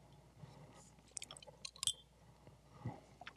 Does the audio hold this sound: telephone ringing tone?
no